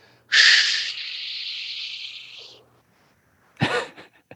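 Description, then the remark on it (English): A loud, drawn-out exhale, given as a breathing demonstration, hisses for about two seconds and slowly tapers off, then after a brief pause a short, sharp breath follows. “You should be able to do that for a minute. Yeah. Exhale.”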